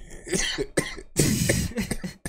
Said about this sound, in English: Cough is scaring me. Sorry, I'm good.